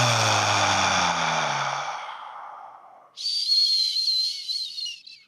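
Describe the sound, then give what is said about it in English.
A long, breathy exhale during a guided breathing exercise, with a faint voiced sigh, tapers off over about three seconds, then a thin, high whistling hiss of air follows for roughly two seconds. No one speaks. “Last inhale. Exhale.”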